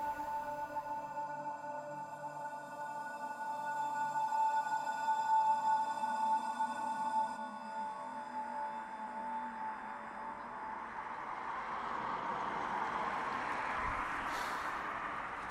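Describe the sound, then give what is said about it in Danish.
Outdoor street traffic outside Gentofte station, heard while waiting for a bus: a steady, whining engine hum with layered tones gives way to a broad rushing swell as a vehicle passes, with no voices. “Nu sidder jeg uden for Gentofte station og venter på bussen til Imdrup Torv.”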